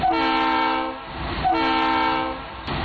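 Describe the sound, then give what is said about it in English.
Two long, loud blasts of a train horn sound effect, each sustained for about a second with a brief pause between them, with no one talking. “So how many toots on the nostalgia train do you give it?”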